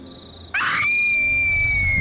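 child screaming

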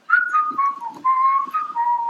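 person whistling a tune

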